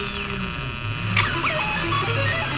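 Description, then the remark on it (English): Continuous harsh static noise from stock footage of static in a video played on a computer, with a steady electrical hum underneath and a few brief chirping sweeps, loud and unbroken for the whole stretch, with no voices. “It's because there's a bunch of stock footage of static.”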